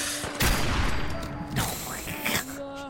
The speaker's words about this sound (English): You know what, like, the bang from the 50 cal, wait, it's pretty satisfying